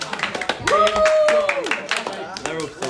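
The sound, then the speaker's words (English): A game show audience claps densely, fairly loud and steady for a few seconds, with voices calling and cheering over the applause, for contestants going through to the Eliminator Grand Final. “Round of applause.”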